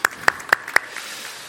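Brief applause: four crisp, evenly spaced claps ring out loudly, then a couple of softer ones trail off into a quiet hiss. No one speaks.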